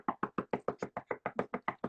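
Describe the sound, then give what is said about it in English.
A rapid, steady run of about a dozen knocks on a door, fairly loud, evenly spaced with no voices. “You better knock on that door.”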